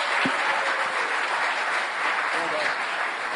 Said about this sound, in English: And a big round of applause for Alex Sutton representing the BC Liberals.